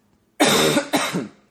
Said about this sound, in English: Is it annual? Or is it like, I can't remember the like last years, but I can remember 2 years ago is when I was like in school and I was like coughing during class a ton.